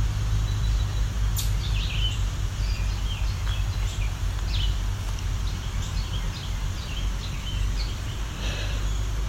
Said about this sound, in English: This is a chipmunk too.